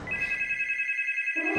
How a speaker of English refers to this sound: The phone made her jump.